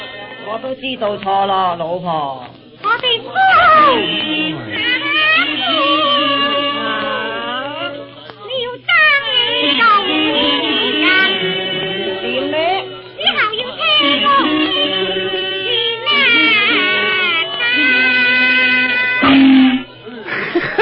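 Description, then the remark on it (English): Chinese orchestral music plays from a record at nine o'clock in the morning, with thin, bright tones and sliding, wavering pitches over about twenty continuous seconds, briefly dipping before picking up again. “That music comes from a record.”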